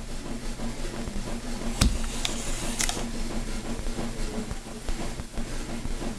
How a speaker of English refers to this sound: He can't eat, but every day around mealtime, he says, he would turn on the food pump. And this is actually what it sounds like.